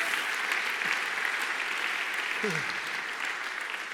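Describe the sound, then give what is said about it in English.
A crowd at a church sermon applauds steadily, clapping their hands in praise of God. A dense wash of many hands clapping at once, sustained and fairly loud throughout, with a brief voice fragment audible underneath. “My God, if somebody clap your hands and give him praise for his promise.”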